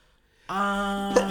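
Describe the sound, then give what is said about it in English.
A single sneeze: a drawn-out, rising voiced 'ahh' builds for about half a second, then breaks into a sharp, breathy burst, with a second short noisy burst right after. “bless you.”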